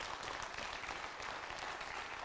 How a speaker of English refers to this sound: Oh, come on, you can clap better than that.